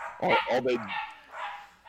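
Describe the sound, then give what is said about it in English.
Small wolves, not full-grown and almost like wolf pups, bark and yip close by: a quick cluster of sharp, rising-and-falling barks, then a thinner, higher yipping call that trails off, with no one talking. “They don't seem like full-grown wolves.”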